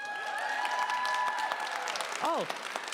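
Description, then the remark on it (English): An audience at a live recording applauds steadily in welcome, a dense wash of many hands clapping at once. A sustained tone runs underneath, and a brief upward-bending sound cuts in near the end. “Thank you for that very spontaneous welcome of applause.”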